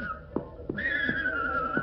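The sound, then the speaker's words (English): A horse named Sammy whinnies loudly, a sustained high neigh that wavers and trails off, with a few soft hoof thuds underneath. “This here is my horse, Sammy.”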